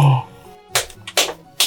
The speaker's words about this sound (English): Now, the one single person clapping. Wait. The two single people clapping.